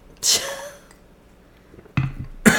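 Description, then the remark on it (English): A person coughs: one harsh cough, a pause, then two more quick coughs near the end. No one speaks. “Excuse me, I'm coughing a lot.”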